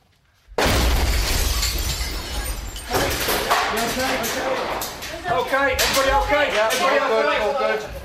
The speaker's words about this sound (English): Okay, everybody okay? Do you know what's going on? It's car bomb.